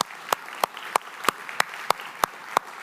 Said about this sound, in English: It's okay, you can clap.